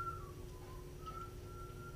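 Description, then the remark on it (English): Someone whistles softly, holding a few long notes that dip and rise slightly in pitch, set against a steady low background hum with no talking. “Your whistling sucks.”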